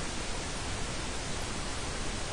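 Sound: pink noise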